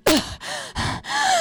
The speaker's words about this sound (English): And I also keep holding my breath and then letting it out, and the gasps are quite loud.